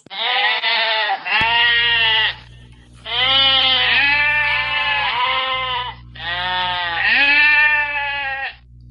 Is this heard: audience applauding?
no